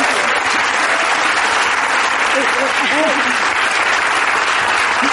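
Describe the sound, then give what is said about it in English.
Sustained, loud applause from an audience fills the whole clip, a dense steady wash of clapping with a few brief voices or whoops rising above it midway. “Can she just have a round of applause?”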